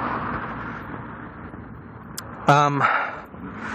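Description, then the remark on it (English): A dog in the distance gives a short bark, maybe two in quick succession, rising briefly over a steady outdoor rumble with wind-like noise. “Sorry, Miss Ripley is with me, and there are dogs barking in the distance, which means we must constantly check our sticks.”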